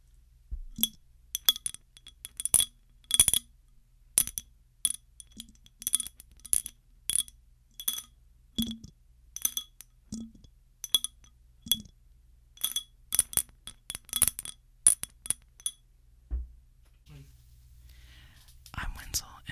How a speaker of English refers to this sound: this is a Ramune bottle that Jonathan left at my house 2 years ago, but I kept because there's Piccolo from Dragon Ball Z on it.